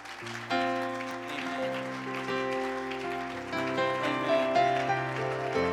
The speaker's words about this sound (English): But I'd like to give my father, my pastor, honor right now. Why don't you give my father a hand clap, although he's not here right now.